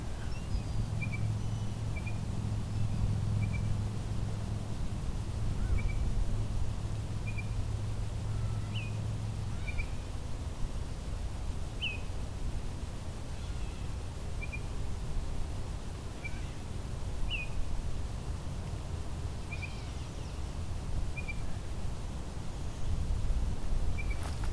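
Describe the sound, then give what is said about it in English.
An oriole sings in the evening, short whistled notes repeating every second or two over a steady outdoor rumble and low background hum. “behind me, this oriole is still sort of singing.”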